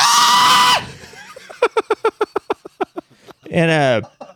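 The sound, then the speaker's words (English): A person vocally imitates two Boston Terriers screaming while fighting each other: a loud, shrill wail, then a fast burst of rapid cackling yelps, ending with another wavering high-pitched scream, loud. “And every time they start fighting with each other, they scream like cackling hyenas.”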